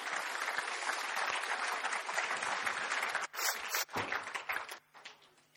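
Steady, dense clapping from an audience fills the first few seconds, then thins out and fades away in scattered claps near the end, with no talking.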